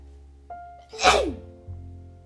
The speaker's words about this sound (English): So, whew, hope you said bless you to me.